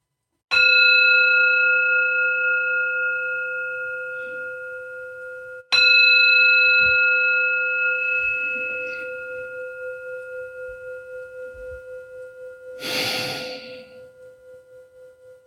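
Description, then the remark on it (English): A singing bowl is struck twice, several seconds apart. Each strike blooms into a clear, ringing tone that slowly fades, followed by a brief rustle near the end. “Grateful for your presence in this moment, and in just a moment, we'll ask the bowl to offer us two chimes to end this moment of presence and move into our conversation in a good way.”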